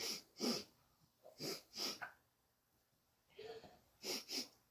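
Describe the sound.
A person loudly sniffs in quick pairs at a bathroom door, imitating an animal snuffling around. Several short, sharp nasal bursts are separated by brief pauses, with no talking.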